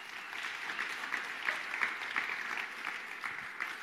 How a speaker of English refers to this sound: If you can join, let's greet them with a clap.